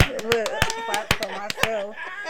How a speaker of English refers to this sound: No applause. No applause. I clap for myself.